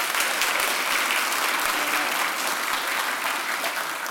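An audience applauds steadily, a dense, even wash of many hands clapping at once that holds at the same loudness for about four seconds with no voices breaking through.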